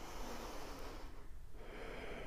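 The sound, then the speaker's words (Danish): A deep final breath taken during a stretching exercise fills the quiet: a long, airy rush of air that dips briefly midway, then rises again as a steady exhale, with no talking. “Tag en sidste dyb vejrtrækning.”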